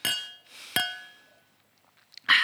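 Glasses clink together in a toast, two bright ringing chimes with sustained tones that slowly fade, followed by a quieter pause and another sharp clink at the end.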